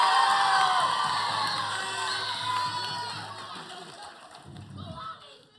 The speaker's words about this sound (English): The first sincere clap you've had in a very long time. Very long time, yeah.